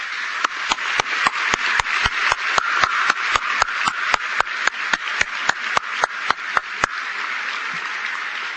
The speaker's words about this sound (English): So perhaps we could give the entire party on the stage a round of applause.